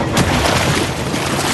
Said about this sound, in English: A large, fast engine thundered past and splashed through a big, muddy puddle.